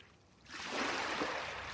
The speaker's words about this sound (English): Waves lapping the beach, wind bending the trees, and the tides pulling the pebbles along the shore.